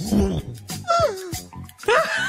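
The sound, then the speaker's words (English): A person's voice mimics a passing truck's rumble, then slides into high, wavering dog-like whimpers and yelps, fairly loud across about two seconds. “You killing me with the truck and the whimpering. I love the truck noise.”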